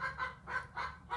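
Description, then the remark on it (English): A rapid run of about five loud, nasal clucks from a chicken in quick succession, with no one talking over them. “Chickens. I'm not doing a chicken.”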